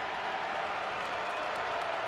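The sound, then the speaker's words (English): A sellout basketball arena crowd at a Penn State game applauds in a dense, steady wash of clapping and murmur that holds an even, moderate level for about two seconds, with no clear voice standing out. “Sellout crowd here at the rack, trying to muster something.”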